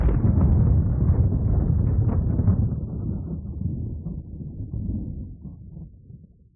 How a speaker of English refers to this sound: As if to emphasize the point, distant thunder rumbled as once again, storm clouds began to move across the sky.